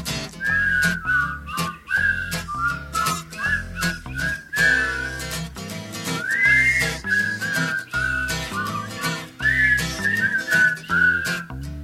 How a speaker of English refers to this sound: I can whistle a tune.